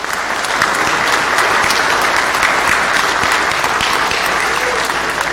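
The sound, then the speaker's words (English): An audience breaks into a round of applause, dense and steady clapping from many hands that holds at an even, loud level throughout without any voices standing out. “And as a congregation, would y'all give them a round of applause, please?”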